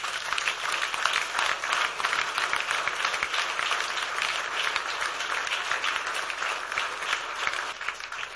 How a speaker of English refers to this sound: If you and I, we are here today, the real person we should be clapping for is Jesus Christ.